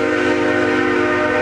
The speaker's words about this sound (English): I gotta close in here because the train's going by. Maybe you should wait till it's past.